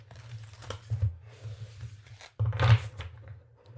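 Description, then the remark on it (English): Shuffling of a deck of oracle cards: papery rustling and sliding, a brief pause, then a louder burst of card handling. No one speaks. “All right, so I'm just going to shuffle and pull a card here.”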